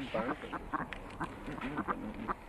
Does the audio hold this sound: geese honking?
yes